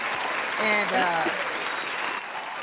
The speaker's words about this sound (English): And I want to give an applause to all those lovely people out there that's been on your side.